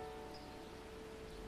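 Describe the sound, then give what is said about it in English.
A steady, soft wash of rain falling on town streets, a dense continuous patter with no distinct individual drops, fairly faint and even throughout, with a low constant hum underneath. “Overhead, locals popped open their windows, inviting the sound of the falling rain into their homes.”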